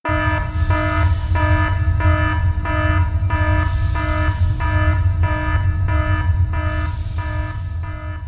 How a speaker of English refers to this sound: I don't know if we mentioned that or not, or if the very alarming alarm, no pun intended, gave away that there's going to be spoilers.